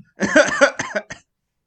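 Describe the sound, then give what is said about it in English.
A hoarse fit of coughing after breathing out a cloud of weed smoke: one long rasping burst followed by three quick, shorter coughs that taper off, with no talking around them. “I think that cough was real.”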